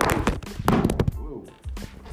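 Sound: phone being dropped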